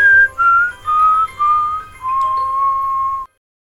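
A man whistles a short descending tune on his way home aboard a bus rocking along a slushy turnpike, several distinct notes stepping down before a long held final note, with a low steady rumble underneath.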